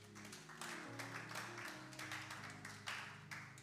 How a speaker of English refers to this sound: And if you're clapping, please do better.